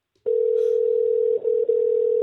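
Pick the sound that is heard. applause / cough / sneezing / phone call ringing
phone call ringing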